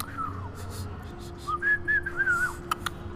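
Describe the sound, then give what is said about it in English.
Someone tries to whistle, producing a few thin, wavering tones that break between breathy puffs of air, a shaky, uneven melody over a low steady hum. “trying to learn how to whistle”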